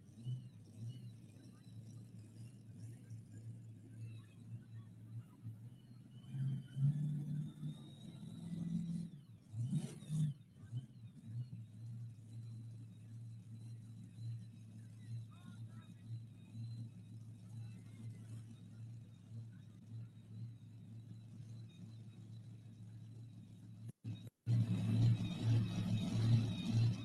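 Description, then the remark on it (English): A powerful pulling truck engine from McAdoo, Texas rumbles steadily at idle, with occasional surges of revving and a louder, throaty roar building near the end, with faint voices in the background. “Troops, if you enjoyed the two-wheel drive class, truck comes out of McAdoo, Texas.”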